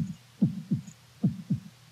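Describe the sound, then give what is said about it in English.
A voice imitates a slow heartbeat, meant as the average white man's heartbeat in a stand-up comedy joke: two pairs of low, muffled lub-dub thumps, evenly spaced, with a soft hum beneath and no talking. “Because the average white man's heart beats like this.”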